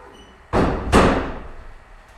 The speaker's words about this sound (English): Sorry, just 1 second. Sorry, I just want to close the door.